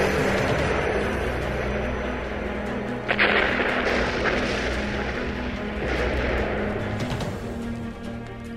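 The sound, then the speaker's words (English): A massive asteroid explosion roars on in a dense, continuous rumble, punctuated by several sharp bursts and cracks around the middle and near the end. Loud, with no voices. “we've escaped the explosion of the asteroid.”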